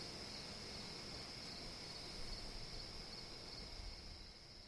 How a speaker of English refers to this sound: even in the middle of the night, at 4 a.m., when you've woken with a harsh taste in your mouth, and you're writing on a yellow legal pad in the dim light, and only the crickets and the wind outside, like now.